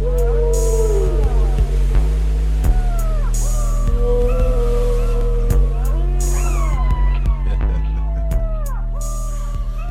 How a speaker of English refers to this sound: I don't think that's a little fella. Oh, big fella. Big whale.